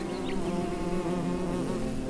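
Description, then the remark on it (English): A dense, continuous buzzing drone of a swarm of bees surrounding the listener, steady, filling the whole stretch with a thick low hum and no voices. “I'm surrounded by the bees.”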